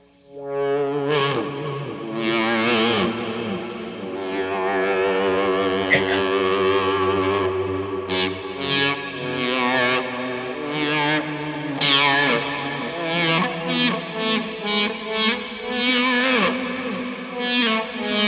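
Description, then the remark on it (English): An electric guitar played through envelope, delay and reverb effects plays sustained, ringing notes and melodic phrases with echoing repeats trailing each note. Later it shifts to brighter, choppier plucks. No one speaks. “And the delay and the reverb sounds great.”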